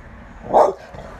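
A single sharp, fairly loud bark from the speaker's dog, outside on the owner's premises, rings out near the middle over a low background hum.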